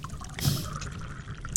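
A short splash of coffee poured into a cup for a second cup, a brief trickle followed by a faint drip and a small clink at the end.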